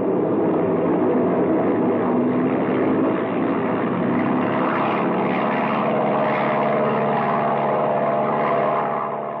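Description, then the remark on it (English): A propeller airplane engine roars steadily at high power during takeoff, a dense, loud drone with a rough buzzing texture that holds constant for several seconds with no voices. “Yeah, we're liable to collect more than a hole in the wing if you don't get this baby airborne soon.”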